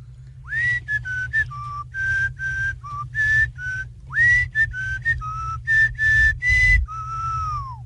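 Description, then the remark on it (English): A person, the first whistler in a whistling contest, whistles a bouncy melody: a string of short, clear pitched notes with quick slides and brief gaps, over a low background rumble. “Whistle a little bit for …”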